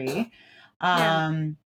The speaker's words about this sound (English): Bless you.